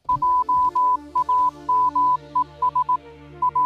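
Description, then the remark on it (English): A steady tone near one pitch keys on and off in short dots and longer dashes, a brisk Morse code pattern of beeps over a low background hum, with no voices. “I can put the Morse code.”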